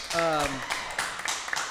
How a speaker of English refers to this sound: Everyone's kind of cleared out now because the bar closed, but I'll do a little clap. Thank you guys.